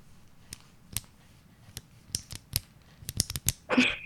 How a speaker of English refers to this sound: Sounds like you're clicking the top of the pin. Yes, there we go. Finally.